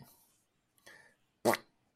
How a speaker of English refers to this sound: You know, and the ghost fart. And the ghost fart.